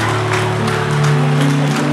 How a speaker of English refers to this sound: Now, give the Lord a mighty clap of praise. Come on, clap for Jesus.